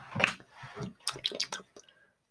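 A few quick, wet sipping slurps of water, short liquid bursts in an uneven rhythm, then a faint swallow as it trails off into quiet.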